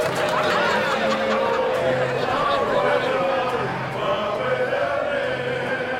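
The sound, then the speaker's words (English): A group of men cheer and shout together loudly as people come through the door, raising their bottles; a dense continuous roar of voices with bursts of laughter mixed in throughout. “When they go through the door, there's a cheer, and all the boys raise their bottles.”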